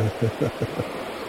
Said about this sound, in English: I hope I have you turned down enough. I've got the levels down because I'm sitting next to a really loud river.